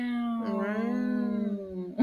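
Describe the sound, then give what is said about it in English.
A single drawn-out, cat-like meow voiced by a person, fairly loud, its pitch gliding slightly up then down over about two seconds, ending with a short breathy sound. “You sound like cats.”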